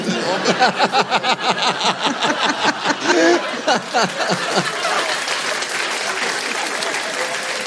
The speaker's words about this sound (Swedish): Kan du applådera åt mig nu?